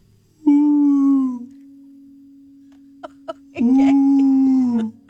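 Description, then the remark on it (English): A voice moans into a guitar's sound hole, making two long, droning, resonant whale-like calls with a steady hum between them and a couple of soft clicks before the second call. “Quickly before I put my guitar down, this is like whale sounds.”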